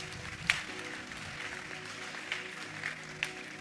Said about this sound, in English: Clap for the Lord Jesus Christ.